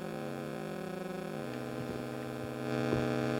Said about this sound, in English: You have one oscillator with two waveforms. So you have a very smooth sounding sine wave, and then you also have a switch here to change this to a square wave.